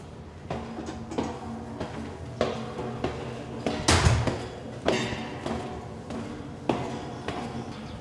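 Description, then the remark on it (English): A door at the base of a carillon tower is unlocked and swung open: a run of metallic clicks and dull knocks, then a louder rattling thud midway, followed by quieter bumps. No one speaks. “There's a door at the base of the Carillon. Linley unlocked it”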